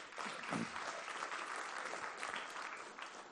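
A roomful of people claps steadily in dense, sustained applause that stays fairly even throughout, with a faint murmur of voices mixed underneath.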